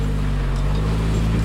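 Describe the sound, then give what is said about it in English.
An off-road vehicle engine rumbles steadily and loudly, a deep idling drone with a constant low hum and some rushing wind noise, no voices. “Oh, that engine sounds great.”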